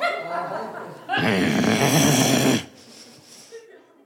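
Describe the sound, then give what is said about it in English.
A man lets out a loud, rough growl lasting about a second and a half, imitating an angry animal, framed by quieter breathy vocal sounds before and after. “I bash my bald head into an open cupboard door in the kitchen, and before I even think through a response, I growl like an animal.”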